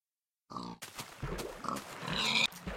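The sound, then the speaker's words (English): Several short pig grunts and snorts from a video game, coming in quick, uneven bursts, with a brief silence at the start and a higher squeal near the end. “You're not gonna get that pig there”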